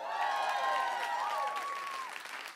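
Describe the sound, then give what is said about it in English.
A crowd applauds with steady, dense clapping that holds fairly loud throughout, while a high whistle or cheer rises and glides above the noise before the applause starts to thin out. “Don't clap.”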